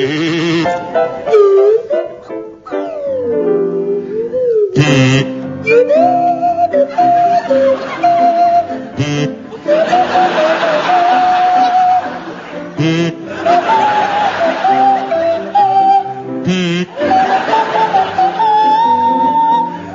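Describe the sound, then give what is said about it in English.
Barry Cryer plays a buzzy kazoo and Graham Garden a sliding Swanee whistle, together playing a Sound of Music number, the reedy nasal melody bleating along with swooping whistle glides and brief pauses between phrases. “featuring Barry Cryer on kazoo and Graham Garden on the Swanee whistle?”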